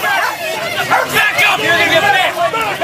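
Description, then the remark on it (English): A police dog held by a federal agent barks and snaps at a man in loud, rapid bursts, its harsh yelps overlapping with agitated shouting and voices from an angry crowd being held back by federal agents on a highway throughout. “One of the agents has a police dog, and it snaps at Bundy.”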